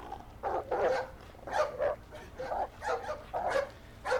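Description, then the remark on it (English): A dog barks aggressively in a rapid series of about five harsh, snarling bursts, evenly spaced, with a low rumble underneath, as it catches up with and attacks a man. “And that's when one of the dogs caught up with him.”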